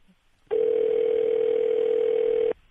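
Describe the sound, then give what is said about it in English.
A telephone tone sounds while a cold call is placed to bring a guest on the line: one loud, steady, mid-pitched hum lasting about two seconds, starting and stopping abruptly, with no voices. “We like the cold call because it just makes the whole process seem perhaps more lively.”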